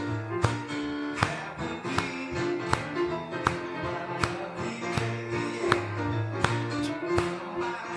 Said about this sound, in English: There they are, clapping happily on 1 and 3.